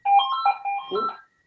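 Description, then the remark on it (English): A landline telephone in an office rings once, a short warbling electronic trill lasting about a second, fairly loud, then cutting off into silence. “Just started in a new office and we put a phone in here and it's okay.”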